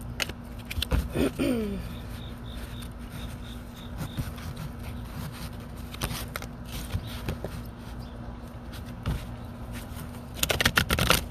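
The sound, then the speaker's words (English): Tarot cards are shuffled, a soft papery riffling and rubbing that comes in bursts, with a louder flurry of flicks near the end over a low steady hum. “Get one more shuffle.”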